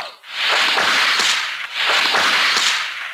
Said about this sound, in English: This is the story of Raiders of the Lost Ark. You can read along with me in your book. You will know it is time to turn the page when you hear the bullwhip crack like this.